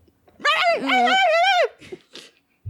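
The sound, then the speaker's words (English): A voice imitates a chihuahua's high-pitched whine: two drawn-out, wavering cries, the second longer with a rising-then-falling pitch, loud, followed by a few faint breathy sounds. “It's a chihuahua, a little high-pitched noise.”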